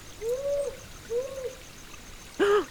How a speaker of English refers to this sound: Up there! I see you. It's not a ghost, but a powerful owl perched up high in the branches. This is Australia's biggest owl,